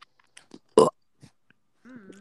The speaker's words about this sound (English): Rate my burp. Oh, I'm gonna make that app. Oh, that maybe 6 out of 10.